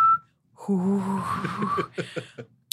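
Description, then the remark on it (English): Someone whistles while humming at the same time, producing a wavering, rising, eerie tone that imitates a sci-fi tractor beam for about a second, followed by a few breathy, choppy laughs. “Is it that you hum while whistling? Yeah. Yeah. You go like, ooh, as you whistle.”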